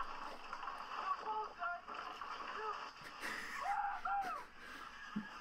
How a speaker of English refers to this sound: The shark is currently attacking their boat.